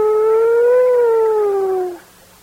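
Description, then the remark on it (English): A voice imitates a police siren wail, one sustained, loud "whoo" that swells slightly and then slides down over about two seconds before cutting off. “The other guy goes down the street, and all of a sudden we can hear, whoo!”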